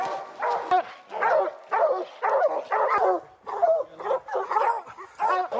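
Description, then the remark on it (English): A pack of hunting hounds bays and howls at a black bear they have chased up a tree in a clearing, a rapid, overlapping chorus with short, urgent cries repeating almost continuously, fairly loud, and no one talking. “The bear is balanced between branches, looking down at the howling dogs.”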